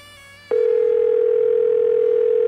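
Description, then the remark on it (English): A telephone ring tone of an unanswered call heard through the line: after a short quiet moment, a single steady, loud electronic tone sounds and holds unbroken to the end, with no one talking. “No one's answering.”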